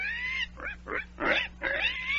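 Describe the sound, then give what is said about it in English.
A pig grunts and squeals in a quick run of about five fairly loud bursts, some rising into high-pitched squeaks, with no talking. “Well, there's no mistaking it now. You are turning into a pig.”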